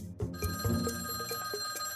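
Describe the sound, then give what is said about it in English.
An old-style telephone bell rings continuously with a bright metallic trill, loud, repeating in quick rhythmic bursts over a low background hum: the phone of a newspaper reporter, Karamarjan, ringing with a call from Bruce Willis. “Karamarjan's phone rang too.”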